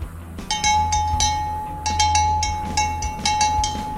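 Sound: bell ringing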